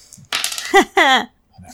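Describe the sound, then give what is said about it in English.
Dice clatter and tumble across a hard tabletop in one fairly loud burst of rattling clicks lasting about a second, with a few brighter ringing knocks before they settle into quiet; the first dice roll of a game. “Sweet dice roll in action. Hear them, sweet, sweet die.”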